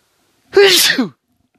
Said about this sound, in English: I got so mad, I sneezed.